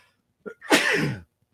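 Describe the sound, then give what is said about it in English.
A single loud sneeze: a brief sharp inhale followed by a forceful burst lasting about half a second, then silence. “I have to sneeze and it's not coming out.”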